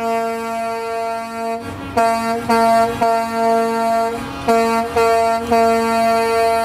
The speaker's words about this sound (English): That was her honking the horn with a big smile on her face.